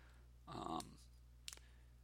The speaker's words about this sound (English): I'm playing with a container of graphite, 0.7 millimeters, for my mechanical pencils